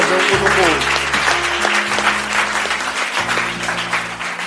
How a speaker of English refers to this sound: Let's just give God a round of applause.